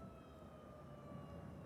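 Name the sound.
emergency vehicle sirens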